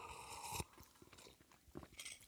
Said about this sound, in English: And it is sweet. It has a sweetness to it that I really enjoy. I'm taking another sip here.